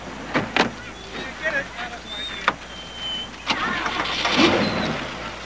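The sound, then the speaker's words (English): Inside a car about to go on a test drive, a few clicks and thumps come before a powerful V8 engine cranks and roars to life near the end, with faint, indistinct voices in the background. “now listen, this baby's got a big engine, a lot of power, big V8.”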